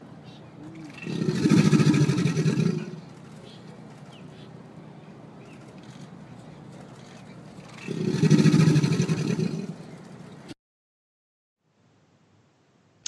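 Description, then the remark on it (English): Two deep, rumbling bellows from an alligator's mating call, each lasting about two seconds and separated by a low background hum, with the second roar trailing off into silence. “So what the alligator is doing is it's a mating call.”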